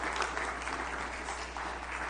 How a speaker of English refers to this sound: Everyone, yeah, we should give God a clap offering here. For sure.